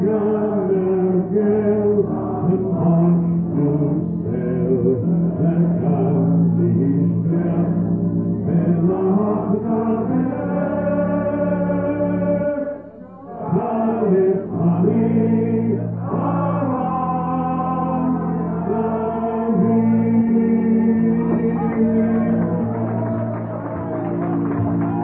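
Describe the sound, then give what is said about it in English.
A standing pub crowd sings the Irish Republic national anthem together at the end of the night, many voices holding long, slow notes in a steady, full chorus, with one brief break partway through before the singing swells again. “And this is the national anthem they're singing now.”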